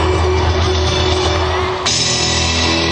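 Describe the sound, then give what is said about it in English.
A large concert crowd at a singer's show cheers and whoops in a loud, continuous roar of overlapping shouts and yells as clips of her television program are shown on screen, with no individual voice standing out, holding steady for the full three seconds. “Now they're showing clips of her television program as the crowd loves it.”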